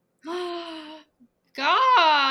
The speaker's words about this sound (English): Gasp!